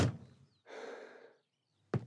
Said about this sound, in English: closes the door, sighing.